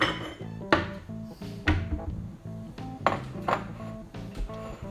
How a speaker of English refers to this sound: We can dish this up into a bowl and have a little taste test.